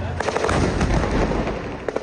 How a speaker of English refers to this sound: That's real, unlike what Ukraine was showing. That's very real. Gunshots in the background. Looks a lot like Iraq. It really does.